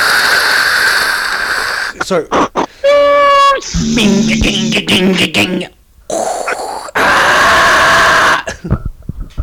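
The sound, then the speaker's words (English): A voice imitates a dial-up modem handshake, the sound made when connecting to the internet over a phone line, with hissy static bursts, rapid warbling tones and a buzzy rising screech, broken into several loud segments. “Like modem speak. You remember when you plugged the internet in a phone line and it had its own language?”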